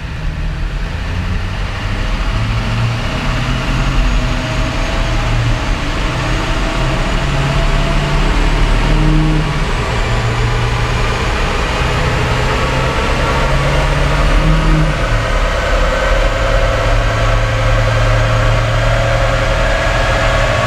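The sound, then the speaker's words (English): A loud diesel pickup truck engine runs continuously in fifth gear on a dyno, accelerating toward 1800 RPM, its deep rumble holding steady with slight shifts in pitch as revs change. No one speaks. “As I approach that 1800 RPM, the truck will stop there.”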